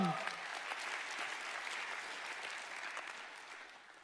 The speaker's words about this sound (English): Amen. We could clap for that. Come on.